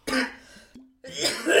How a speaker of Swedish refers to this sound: Fan, börjar du hosta så mycket för när vi börjar spela in? Innan var det ganska lugnt.